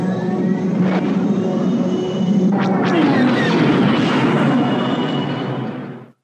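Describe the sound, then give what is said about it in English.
A Star Wars snow speeder attack effect: a dense, steady roar of whining engines with whooshing fly-bys and sharp sweeping tones midway, loud throughout with no talking, then cutting off abruptly. “Next is more snow speeders, the snow speeder attack.”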